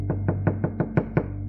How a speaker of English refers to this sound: He said, look, or behold, the King James, he said, I stand at the door and knock. He said, I'm knocking at the door of your life. I want to come in.